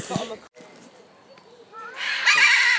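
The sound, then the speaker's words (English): A large parrot lets out a brief harsh squawk, then after a quieter, murmuring stretch gives a loud, raspy, drawn-out screech that holds to the end. “That is a very large parrot, and I can't remember the exact species.”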